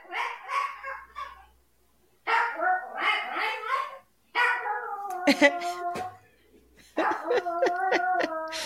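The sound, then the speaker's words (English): A lonely dog barks repeatedly and lets out high, whining whimpers in several bursts, while people talk in the background between and under the cries. “You got to attend to your lonely dog over there.”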